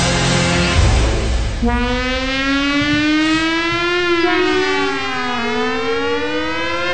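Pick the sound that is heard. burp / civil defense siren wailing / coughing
civil defense siren wailing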